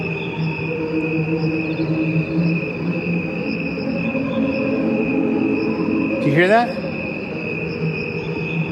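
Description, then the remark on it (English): A dense chorus of crickets in the woods trills steadily and continuously, many insects chirping together in the same rhythm in a constant, even drone; near the end a voice briefly speaks over it. “What I want you to hear are the real crickets singing.”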